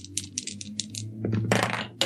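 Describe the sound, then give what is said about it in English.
A die, rolled again during a tabletop game after one fell off, clatters onto a hard tabletop, a quick series of sharp light clicks, then a louder rattling tumble as it rolls and settles with a final knock over a low steady hum. “One fell off the thing, so I'm going to roll it.”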